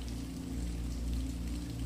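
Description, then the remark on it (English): Steady rain patters on the foliage around a centuries-old stone cottage, a continuous soft hiss dotted with scattered light drops, holding an even level throughout with a low rumble underneath and no voices. “Every raindrop creates a different tone as it patters on the foliage around the cottage.”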